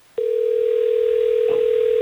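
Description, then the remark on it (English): A single steady telephone tone, like a dial tone or one ring, as hosts of radio station Hot 101.5 place a call, hums loud and clear for about two seconds, then cuts off abruptly. No one speaks over it. “Well, let's try to get her on the phone so we can figure this out.”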